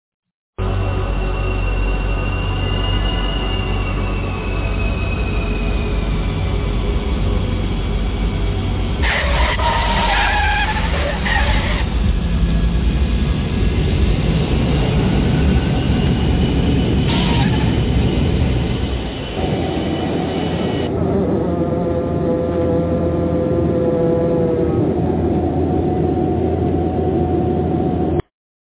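An airplane landing: a loud, steady engine roar with a few bursts of harsh hiss and screech, then the rumble shifts and settles into a lower drone with whining tones, no voices.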